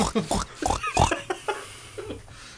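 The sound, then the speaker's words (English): A voice actor imitates a pig for a voice acting reel with a quick series of snorty, nasal oinks and squeals, fairly loud, tapering off into softer grunts by the end. “Well, we got an oinker. We got a little piggy porker in should here.”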